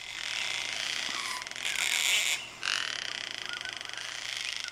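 A gang-gang cockatoo, a small gray parrot with a bright red crest from the alpine forests of southeast Australia, gives harsh, creaky, grating calls like a rusty gate, a raspy rattling squawk with a brief break partway, then resuming in a steady pulsing creak.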